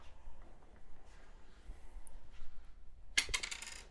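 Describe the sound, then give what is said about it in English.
A small four-sided die (d4) clatters onto a hard table in a quick burst of bright, rattling clicks near the end, following a stretch of quiet background noise. “You need to roll a d4.”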